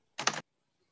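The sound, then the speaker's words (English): A brief, rapid flurry of clicks as someone types something in on a computer keyboard, fairly loud, lasting about a quarter second before silence. No voices are heard. “Okay, so let me just type this in.”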